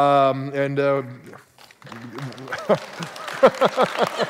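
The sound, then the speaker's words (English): A sustained voice opens, then after a short pause scattered, uneven handclaps from a church audience start up and grow more frequent, mixed with some talking. “One person's like, yeah, and then everybody else is like, okay, yeah, we got to clap too.”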